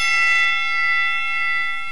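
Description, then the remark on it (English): A bright, metallic bell rings out loud, its shimmering overtones sustaining steadily and only slightly fading over the two seconds, with no talking. “Ring the bell.”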